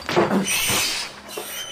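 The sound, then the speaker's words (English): Many rats scurrying in the corner of a chapel, a busy scratchy rustle of claws with a few brief high squeaks, steady and fairly loud for under two seconds, no voices. “Rats. It's alive with them.”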